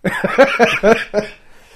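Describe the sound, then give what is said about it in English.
A short fit of coughing from someone still recovering from an illness, about five quick, rough bursts in a row, fairly loud and voiced, trailing off into quiet after just over a second. “I've got a He's still recovering cough.”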